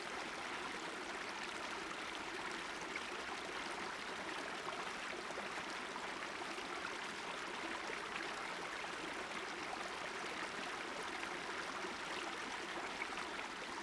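A small stream burbles and gurgles steadily as it flows out from under a huge snowbank at the base of a steep wooded slope, a continuous bright rush of running water for the whole stretch, with no voices or other sounds.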